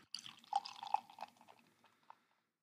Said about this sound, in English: Let me pour this beer so Harrison can have a sip.